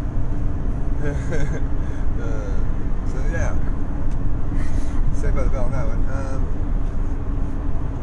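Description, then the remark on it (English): A steady low rumble of road noise inside a moving car fills the whole recording, constant and fairly loud, while people talk casually over it. “Because I'm driving your car.”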